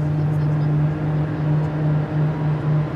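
An airplane jet engine slowly winds up as it is started by compressed air from a small turbine engine, its turbine droning steadily, a low, constant hum with a whining tone over a broad rushing background, fairly loud and unbroken throughout, with no voices.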